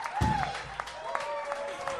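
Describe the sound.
A crowd cheers and claps steadily, with hand claps crackling through a lively roar of voices and a few rising whoops, fairly close and loud throughout.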